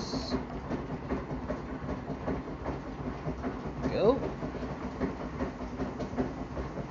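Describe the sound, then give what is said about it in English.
Freshly opened pineapple kombucha is poured into a tall Coors Light pilsner glass, with a steady crackling fizz throughout and a brief rising gurgle partway through as the liquid fills up. “Alright, just opened it. Pour some in my tall Coors Light Pilsner glass.”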